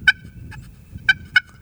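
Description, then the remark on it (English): Sharp, high-pitched turkey clucks made on a slate call with a striker held at an angle: a few short, separate notes, one early, a fainter one, then two close together, over a low background rumble. “And you're basically, of course, it probably needs sanded because we've used it today. But you're just basically giving a little clucks.”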